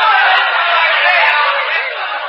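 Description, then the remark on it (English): A dense, steady, loud wash of crowd noise as a crowd of bird lovers rushes out of the room all at once, bustling and shuffling evenly for a couple of seconds. “It worked. The crowd rushed out.”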